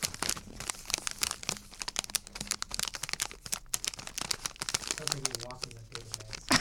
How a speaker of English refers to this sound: Does this sound like leaves, Mark? Or does it sound like a paper bag crumpling?